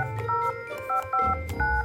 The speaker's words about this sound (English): Mr. Hedgehog put his paw to a line in the phone book and dialed a number